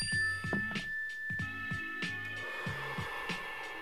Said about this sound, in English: So what we're gonna do right now, while I'm holding this thing, is when I hit the mindfulness bell, please everybody just take a slow, deep breath. Ready? Here we go.